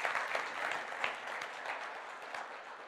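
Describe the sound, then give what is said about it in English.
An audience claps together in a steady, dense burst of applause, many hands overlapping into a continuous bright patter that holds at an even level throughout. “All right, yeah, you can clap.”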